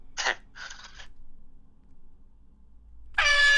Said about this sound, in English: Let me get my air horn. Okay, hang on. Come on.